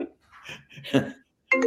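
A phone that was taken upstairs rings, blowing up with incoming calls: a few soft clinking, burbling electronic tones, then a brighter, louder ringtone burst at the end, with no one talking.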